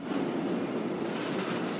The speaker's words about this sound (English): Every one of those trains you just heard going over the Alps carries close to 500 tons of pasta, 60 tons of sauce, all of that sloshing over the mountains in those trains.